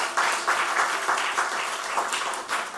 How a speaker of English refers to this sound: A round of applause for the message tonight.